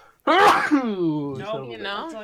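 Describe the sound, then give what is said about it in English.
A single loud sneeze with a sharp breathy burst, trailing into a drawn-out voiced groan that wavers in pitch before fading. “Bless you.”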